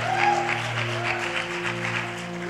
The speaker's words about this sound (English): And you know, this whole thing has been, yeah, you guys can slow clap it.